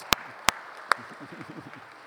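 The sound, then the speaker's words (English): Three sharp, loud hand claps spaced about half a second apart, a brief smattering of applause for a singer after a Christmas song that quickly fades into a low murmur of voices. “I think we should give him a little round of applause.”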